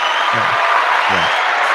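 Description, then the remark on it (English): An applause sound effect: steady clapping from a crowd, a dense hiss of clapping that runs the whole length, with two short low voice-like murmurs underneath. “We need we need some applause sound effects.”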